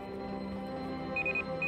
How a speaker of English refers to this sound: From inside the building, the warning bell.